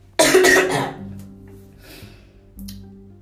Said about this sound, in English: and y'all, I've been coughing up a storm, excuse me for that